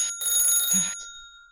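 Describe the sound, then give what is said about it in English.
A telephone bell rings in one short, loud metallic burst, then its bright tone lingers and fades away. No voices are heard. “Is there a phone in my room? Yes. I answer it.”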